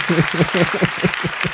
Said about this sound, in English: Can we get clapping? Thank you. Easy clap. Easy clap.